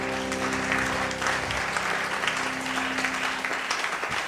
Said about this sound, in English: Oh, give the Lord a clap in the house.